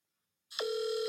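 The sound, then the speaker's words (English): After a moment of silence, a phone line clicks on and a steady electronic ringing tone begins as a call is placed, holding one even pitch, clear with no voices. “I'm going to make a couple of phone calls. My first call is going to go to Yeager Alexander.”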